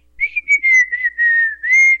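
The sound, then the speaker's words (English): A man whistles a wavering, tuneless melody in several short and sustained phrases, fairly loud, with no talking. “He just continued to whistle.”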